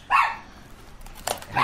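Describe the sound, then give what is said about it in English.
Emotional support dogs bark in a restaurant in short, sharp bursts: a loud bark at the start, a brief yip in the middle, and another loud bark at the end, with no talking. “Goddamn emotional support dogs.”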